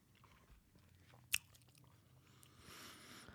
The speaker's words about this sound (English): Let me blow my most aggressive bubble.